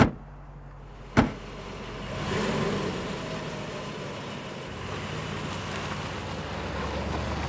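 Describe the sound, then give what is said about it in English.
A sharp thump like a car door shutting, then an engine swells and rumbles steadily as a car pulls off and drives away, with no voices. “Just get in the car. We raking tonight!”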